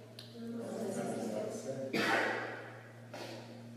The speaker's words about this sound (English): Bless you. That was for the sneeze, not blessing you.